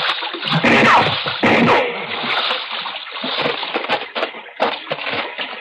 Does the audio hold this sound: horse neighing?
no